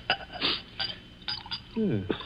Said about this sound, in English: Then perhaps you wouldn't mind pouring me a little. My doctor allows brandy, though I'm forbidden spirits.